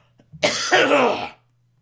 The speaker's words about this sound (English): I have to cough, excuse me.